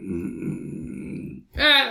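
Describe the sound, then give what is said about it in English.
A long, low, rumbling burp stretches for over a second, fairly loud, then cuts off and is followed by a brief, sharp vocal outburst. “So funny I burped.”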